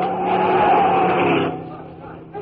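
A loud car speeds through a traffic light with a sustained, squealing screech of tires for about a second and a half, then drops away to a quieter rumble.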